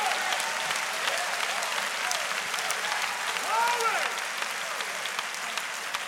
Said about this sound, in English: Come on, clap your hands and give praise.